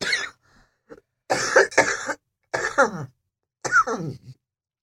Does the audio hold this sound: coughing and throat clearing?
yes